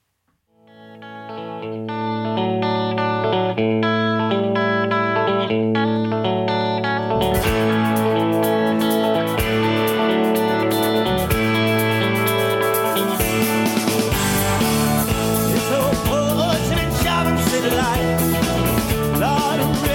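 A rock cover song from a 2004 tribute album opens with sustained, effects-laden guitar chords before the full band crashes in with drums and distortion, continuing loud and steady with no voices.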